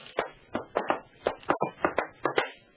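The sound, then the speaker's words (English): Someone knocks on a door marked Adam Flynn in a quick, slightly uneven series of about ten sharp raps, not loud, with no voices. “I rapped on the door marked Adam Flynn, and a deep voice called, Jerry Browning?”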